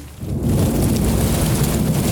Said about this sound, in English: It's going to rain. It's inevitability.